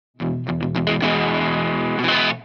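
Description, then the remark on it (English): A Ronnie Scott electric guitar played through effects: several quick picked notes lead into a loud, sustained distorted chord that rings out for about two seconds, with no voices. “This guitar is pretty sick looking. This is called a Ronnie Scott guitar.”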